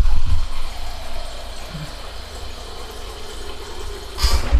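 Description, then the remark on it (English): A steady stream of filtered water runs from a fridge dispenser over a low mechanical hum for several seconds, ending in a brief louder splash or clunk. No one speaks. “Well, I guess it's out of the fridge because, you know, that's filtered water.”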